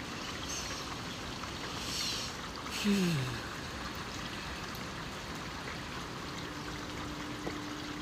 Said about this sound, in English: And just in case if you need it, listen to this rain. Take a couple big deep breaths.